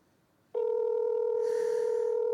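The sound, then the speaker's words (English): A steady electronic telephone tone of a call being placed from a phone cuts in abruptly after a brief quiet moment and holds loud and unbroken, like a line ringing or dialing, with no voices present. “It's from your phone. You won't recognize the number, but.”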